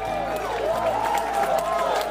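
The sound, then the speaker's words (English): A dense crowd roars and cheers nonstop, scattered claps popping through the din, while a man's raised, shouting voice rises and falls over the noise. “He was startled yet again by a shouting man and a roaring crowd.”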